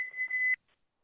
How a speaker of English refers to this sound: Sorry, there was a timer going off, but I didn't know it was on.